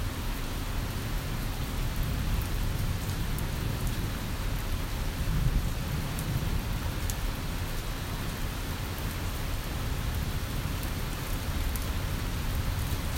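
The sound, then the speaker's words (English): Steady, heavy rain pours down without a break in a city in the early morning hours, a dense hiss layered over a continuous low rumble like thunder. No voices, just the even, unbroken wash of the storm. “resoundingly alive in the wee hours of the morning, as the rain comes down and washes away the sins of man.”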